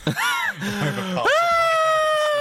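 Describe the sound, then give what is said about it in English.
A loud human scream with no talking, from someone who has lost a phone: a wavering, strangled cry first, then a long, steady high-pitched shriek held to the end, like someone acting out a scream. “What happens when you lost it? You just scream.”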